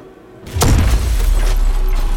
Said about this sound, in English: I could hear the front gate shatter several floors below as adventurers began to pour in.